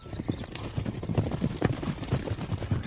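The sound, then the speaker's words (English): A herd of wild horses gallops past in Wyoming, hoof beats thundering in a dense, overlapping rumble of rapid thuds that stays steady throughout. “Probably the thing that'll hit you the most is when the horses start running, just the thundering of the hoof beats.”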